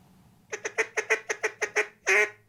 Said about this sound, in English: So is making the duck calls that bring the ducks in. One man in central Louisiana is keeping the old ways alive.